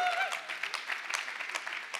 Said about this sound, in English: So you can go ahead and clap if you want to, people.